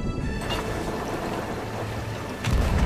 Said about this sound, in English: We're taking on water. All right, I'm going down below.